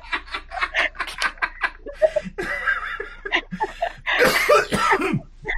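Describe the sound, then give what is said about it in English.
Hard, breathy laughter breaks into a fit of harsh coughs, several rapid bursts in close succession, loud, with the laughing and coughing blurring together throughout. “Why am I slowly turning into Aaron from Game Grumps, where I laugh so hard I cough?”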